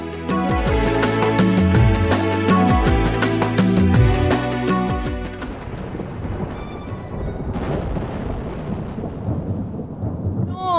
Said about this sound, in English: again it is raining heavily.